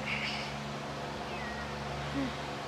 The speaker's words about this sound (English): Cat.